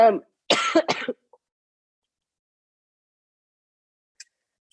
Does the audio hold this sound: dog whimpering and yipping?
no